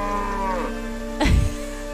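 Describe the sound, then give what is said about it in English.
A cow gives a single drawn-out moo that slides downward in pitch, followed by a brief, louder burst of noise. No one speaks. “I'm a cow.”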